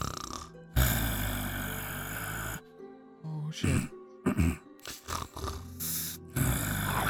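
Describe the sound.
A voice mimics the loud, drawn-out snoring of a buff panda humanoid in a canopied king-size bed, with long rasping breaths broken by short snorts and gasps, and a brief spoken word slipped in between.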